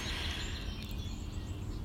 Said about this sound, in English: All of those birds. It's early in the morning here. I'm in Rhode Island on the coast, and it is absolutely beautiful. And there's, well, just listen. So many bird noises. And it's just a lovely, lovely morning here, very early.